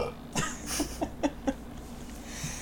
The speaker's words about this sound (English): Hold on, I can't stop burping. Hold on, I'm dying. Gross. I drank Dr. Pepper with lunch, and now it's all coming back to me.